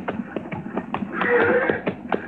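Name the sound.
horses approaching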